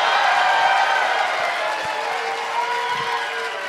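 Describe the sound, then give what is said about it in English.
A live audience in Denver, Colorado claps steadily, a dense, even wash of many hands that holds at a fairly loud level throughout with a few faint voices mixed in, and no one speaking over it. “Don't clap too hard.”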